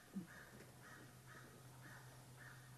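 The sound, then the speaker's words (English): Repeated harsh cawing bird calls, like a crow, sound in an even series of about five, faint over a steady low hum of background noise. “the sound of birds.”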